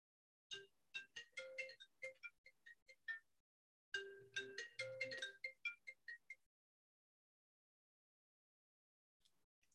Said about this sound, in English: now why that phone wanna ring and mess up my jam like that?